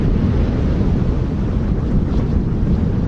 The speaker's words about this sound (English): I lower myself to the deck, lie on my back, and close my eyes. I'm hoping the fresh air and sound of the surf will soothe me